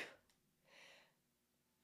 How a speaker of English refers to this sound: And if you want to take a look, I got to sneeze.